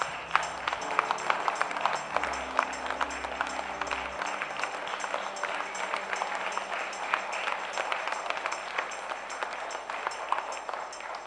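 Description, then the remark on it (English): A church audience, standing, claps steadily for about eleven seconds as a clap offering to the Lord: a dense, even wash of many hands with no pauses and no one speaking over it. “church, shall we stand and give a clap offering unto the Lord?”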